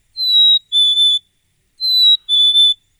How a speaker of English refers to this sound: Lots of chickadees out there. Doesn't take long to hear one of them belting this out.